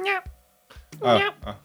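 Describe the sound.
A person imitates with their voice the yapping of a cat that could not meow: a few short, strained yelps, the longest and loudest near the middle, with brief pauses between them. The sound is clear.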